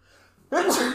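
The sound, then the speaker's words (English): A single sharp, loud sneeze bursts in after a moment of near-quiet, filling the rest of the short moment with a bright, explosive rush of breath. “Bless you.”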